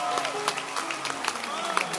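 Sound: audience clapping hands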